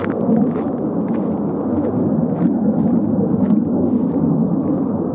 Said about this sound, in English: Oh, noisy planes. Maybe from Lakenheath? God, that is a long way away in the sky.